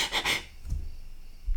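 A single sharp, breathy sneeze bursts out at the start, then fades into low background rumble with no talking.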